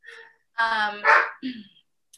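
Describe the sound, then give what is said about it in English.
A dog gives two or three sharp, fairly loud barks in quick succession at its treats, after a brief faint sound at the start. “My dog bark bothering too much.”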